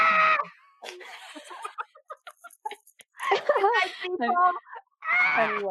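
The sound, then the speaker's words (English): A person screams and screeches in several loud bursts of high, wavering cries separated by short pauses, the shrill voice sounding almost like a squawking bird. “just close out with … screaming”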